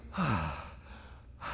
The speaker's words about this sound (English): I'm breathing. It's oxygen. It's out there. I didn't create it.